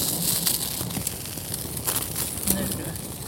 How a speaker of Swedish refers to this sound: Wow, vad det sprakar i mackan. Det börjar bli varmt nu.